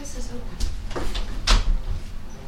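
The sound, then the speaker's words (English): A door opens with a series of wooden creaks and knocks, a few short bursts of clattering over about two seconds, with faint muffled voices in the background. “I've never seen that door open.”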